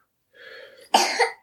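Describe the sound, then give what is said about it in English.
A single sneeze: a half-second drawn, voiced inhale rises into one sudden, loud, breathy burst that trails off after about half a second. No talking accompanies it. “Jeez, bless you again.”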